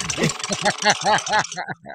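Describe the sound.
A car engine sputters in a quick, steady run of about eight throaty chugs, each with a warbling, almost voice-like tone, before tapering into fainter, uneven pulses at the end.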